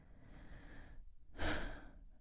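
A person gasps once, a short, sharp, breathy intake of air, rising out of a quiet background hiss with no talking.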